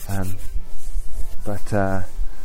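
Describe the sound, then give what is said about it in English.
Hands rub together to keep warm in a steady, dry swishing that runs throughout, broken by a few short voiced huffs or hums from a person. “About 7 more minutes of huffing, puffing, chair folding, and hand rubbing to keep warm ensues, and then there they are.”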